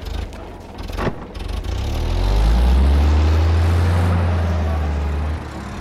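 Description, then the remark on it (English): Heavy engines of a row of flatbed trucks, loaded with uniformed, armed men, rev and rumble as the trucks pull away, a deep droning roar that swells to a loud, steady peak and then begins to ease off. No one speaks. “Then, in a flurry of activity, they pile into a row of nearby flatbed trucks.”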